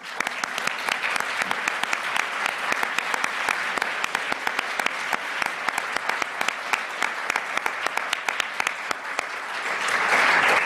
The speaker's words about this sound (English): So if I may just deviate and ask the audience to join me in a round of applause to my institution that I think made all the difference in my career, my life, my way of thinking, and this round of applause is to LSE.